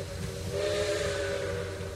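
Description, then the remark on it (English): A steady train whistle blows continuously for the whole moment, loud, layered over a rumbling, hissing background of steam and rolling rail noise, from a train to Chicago. “One day, Betty was running to catch a train to Chicago.”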